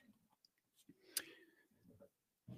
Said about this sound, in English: Let me make sure the door's closed. Doors close, loud kids.